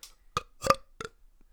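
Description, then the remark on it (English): A series of three short, guttural burps, the middle one longest and loudest, croaked out in quick succession as an attempt to burp a famous quote in a British accent, with brief gaps of quiet between. “Pretty thick close. British burp accent.”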